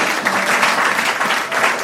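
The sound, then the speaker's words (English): An audience at a church service claps together in steady, dense applause that stays loud and even from start to finish, with no voices standing out above it. “A round of applause as well.”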